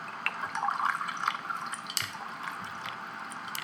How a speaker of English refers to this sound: Let's pour us a couple of strawberry fizz. Oh, and, my gosh, I can't wait. I know. I can't wait to see what this tastes like.